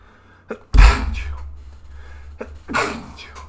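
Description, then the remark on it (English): Two loud sneezes: a short inhale catch, then a sharp explosive burst, followed a couple of seconds later by a second sneeze with its own quick intake of breath. “Bless you.”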